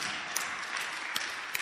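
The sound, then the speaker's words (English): An audience clapping together, a dense, steady crackle of many hands with a few sharper individual claps popping out above the rest. Moderately quiet, with no voices. “Clap for Jesus.”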